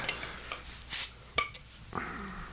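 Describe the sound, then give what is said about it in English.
A bottle of filtered beer is pried open with a big metal bottle opener: light metallic clicks, a brief bright hiss of escaping gas, then a sharp clink of the cap coming free, followed by soft rustling. “All right, I'm going with the big honking bottle opener.”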